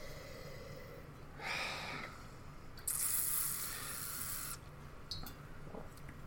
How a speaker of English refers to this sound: Okay, one more investigation here. A big sniff. Nose isn't as bad the more I'm smelling it, to be honest.